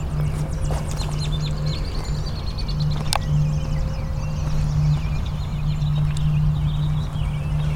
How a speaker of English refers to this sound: There will be some sound as I walk though. Maybe not on this ground as much because it's hard dirt. But if I get into grass, you'll really hear it. Walk on some mulch here.